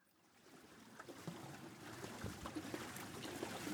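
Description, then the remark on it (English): A boat glides along a river, a steady wash of lapping and trickling with small splashes that gradually swell louder, with no voices. “The boat starts to slow down and turns into a side canal off the river.”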